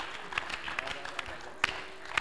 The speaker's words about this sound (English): Clap for Jesus. Clap for Jesus.